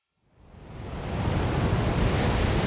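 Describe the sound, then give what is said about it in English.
Rough, choppy ocean surf in gale-force winds off the coast of England, with foam blowing in streaks across the water, rises quickly from silence into a dense, continuous roar of crashing water and gusting wind, loud, with no voices. “Gale force winds off the coast of England. Choppy waves, foam blowing in streaks across the water.”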